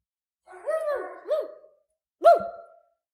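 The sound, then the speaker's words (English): A person imitates a dog barking with three short, voiced woofs, two close together and one after a brief pause, fairly loud with no other sounds. “Okay, that was me. I'm just trying to make it.”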